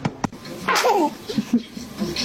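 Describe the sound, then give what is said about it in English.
A single sharp sneeze bursts out, followed by a few soft, brief vocal noises and light background murmuring. “Oh, God bless you”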